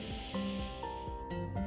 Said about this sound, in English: Through my hips and thighs, knees and calves, right down to my toes, I speak, relax, breathing in, sending the air right down to the toes.